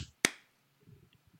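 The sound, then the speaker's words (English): One sharp, loud sync hand clap rings out by itself and decays quickly, followed by a second of quiet and then faint, low murmuring voice sounds. “I got to do the clap because I'm in charge.”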